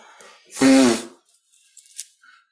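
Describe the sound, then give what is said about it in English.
A single loud nose blow, a honking, buzzy burst lasting about half a second, followed by a few faint sniffs and rustles. “The second nose blow went in the opposite direction as the first one.”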